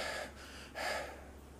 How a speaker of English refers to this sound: So usually when I'm driving there, I'll stop, get in a car, but okay, start breathing.